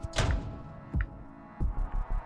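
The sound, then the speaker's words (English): A video game door slams shut behind the player character as they leave a secret passage inside a fireplace. A heavy booming thud is followed by a few lighter, deep thunks at uneven intervals over a low steady hum, with no talking. “Oh, the door just closed behind me and the camera didn't like it.”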